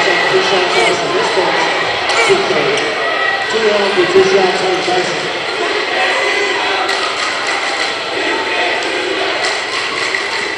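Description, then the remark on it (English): The Forest Hills basketball crowd reacts to a blocking foul call with a loud, dense roar of many voices that holds steady for about ten seconds. Occasional thuds from the court come through underneath. “It's safe to say the Forest Hills crowd didn't like that one.”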